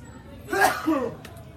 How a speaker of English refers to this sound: Here's the part where I step away to sneeze